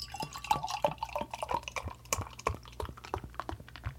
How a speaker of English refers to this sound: Then pour the wine.